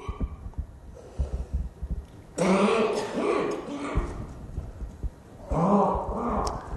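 Two rough, throaty bursts of coughing and throat clearing, fairly loud, separated by a short pause, with low muffled thumps and quiet background noise before them.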